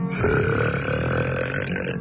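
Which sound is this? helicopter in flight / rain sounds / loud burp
loud burp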